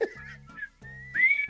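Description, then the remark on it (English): A bright whistled melody of the theme tune of The Andy Griffith Show, held notes gliding into one another over a steady, low backing accompaniment, fairly loud, with no talking. “Mine is the whistling one.”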